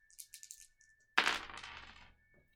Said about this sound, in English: So I did roll a 1 on my attribute dice, so I gotta keep that. So I get to reroll the rest.